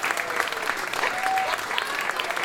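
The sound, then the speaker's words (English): Steady audience applause at a live music show for musicians including saxophonist Colleen Allen and Steve Hunter, a dense wash of many hands clapping at an even level throughout, with faint voices and a brief whistle-like tone mixed in. “And please give a huge round of applause as well to that Rasputin of rhythm, the Earl of the 88s, my right-hand man.”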